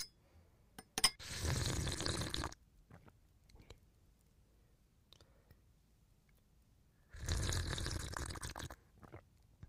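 Two long, wet slurping sips of whiskey, each lasting over a second, separated by a quiet pause with a few small clicks and smacks. No one speaks.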